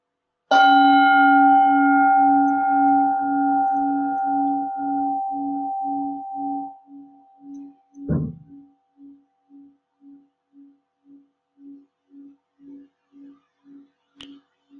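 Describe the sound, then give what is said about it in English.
A single strike of a meditation bell rings out, its bright overtones fading while a deep, wavering hum pulses steadily for many seconds; a soft knock sounds midway as the tone slowly dies. “Just let the sound of the bell bring the present moment to you.”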